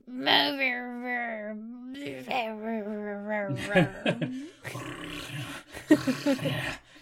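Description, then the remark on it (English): A person imitates a wolf with a long, wavering howl-like moan that breaks into rough growls and grunts. The voice is fairly loud, with no other sounds around it. “Do you want to hit with some like awesome like wolf grunting noises?”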